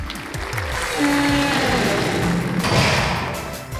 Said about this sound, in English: Is that your door noise?